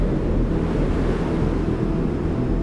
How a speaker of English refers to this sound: Raheem had forgotten all about the storm, but now he was being buffeted on all sides by the ferocious wind.